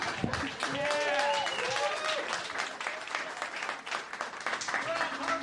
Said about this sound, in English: Keep it going for her. Come on, one more round of applause. There we go.